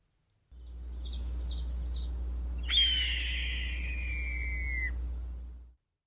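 A single raspy, drawn-out red-tailed hawk scream that slides downward for about two seconds, preceded by faint high chirps, over a steady low background hum.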